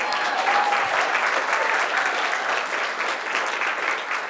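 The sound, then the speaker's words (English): Steady applause from an audience for members who are past 83 years old, a dense, even patter of many hands clapping at a fairly loud, constant level for several seconds, with no voices standing out. “All right, let's give them a clap.”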